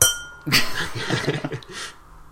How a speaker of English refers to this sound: Oh, there might be another bell here, actually, because I don't know.